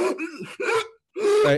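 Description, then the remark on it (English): A person makes strained, voiced gasping sounds, two quick ragged bursts, a brief silence, then a longer choking gasp, fairly loud, as if imitating a postal worker struggling for breath. “He's gasping for breath, and there's this dark coloration around his mouth.”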